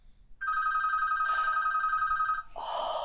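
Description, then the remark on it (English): A telephone rings with a steady electronic bell tone, sustained for about two seconds, loud, followed by a brief burst of noise as it cuts off. “Let's see who that is.”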